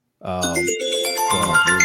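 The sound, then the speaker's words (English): A phone's melodic chime rings out fairly loud, a quick run of bright, layered electronic tones that lasts under two seconds with no talking over it. “Every time now. Your phone loves that. Your phone loves my Black History Fact.”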